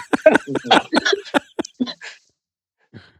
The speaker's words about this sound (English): You guys are coughing like crazy over there. I do not want to be a fly on the wall at your place right now.